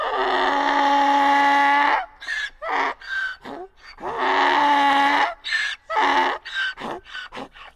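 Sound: donkey braying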